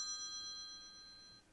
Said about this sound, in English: Look, my phone ring in the middle of shit.